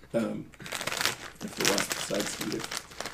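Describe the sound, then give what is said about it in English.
A cookie packet being opened crinkles and rustles almost continuously for about three seconds, bright crackly bursts of plastic rising and falling while people talk over it. “Do we want to open these cookies? I already did.”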